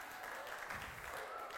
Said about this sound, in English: I didn't say that for you to clap.